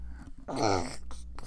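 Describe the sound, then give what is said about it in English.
A child's voice imitates a pig's oink: one drawn-out, gravelly, grunting call that swells loudly and then fades, with short breathy noises before and after. “What sound does a piggy make?”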